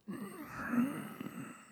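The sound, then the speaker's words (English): A person imitates the contented nasal breathing a female pet dog makes when cuddled: a single sustained, breathy snuffling exhale lasting under two seconds, soft and steady with a slight rumble, with no words spoken. “But and when you get really close and you give her a cuddle, she makes this noise.”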